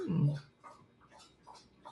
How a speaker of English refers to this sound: Time for drinking of the dogs.